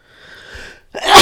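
A single loud sneeze from bad allergies on a windy day in the Bay, with a drawn-out, wheezy inhale building up before it, then a sharp, bright burst of noise at the end.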